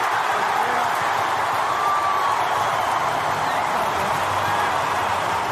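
A stadium crowd of Brisbane Lions fans cheers after Eric Hipwood kicks a goal on the stroke of quarter time against Carlton, a dense, loud roar of many voices that holds steady without letup for the whole stretch.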